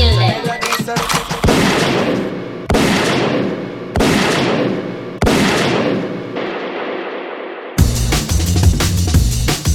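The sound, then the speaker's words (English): A burst of music cuts into four loud, booming gunshot sound effects signalling a rewind, spaced about a second apart, each trailing off in a long echoing decay, before the music slams back in. “say liquid means forward, gunshot means rewind.”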